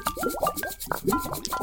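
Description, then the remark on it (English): Hot liquid bubbles and gurgles out of a thermos by the ocean in a quick, irregular run of wet plops with short rising glugs, at moderate volume, with no voices. “Time to contemplate this ocean as hot stuff bubbles from a thermos.”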